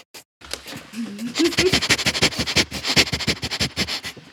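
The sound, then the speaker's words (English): A person imitates a chihuahua sniffing with a quick, steady run of short breathy snuffs, lasting several seconds, with a bit of voiced humming mixed in early on. “I don't know how to do a dog sniffing noise.”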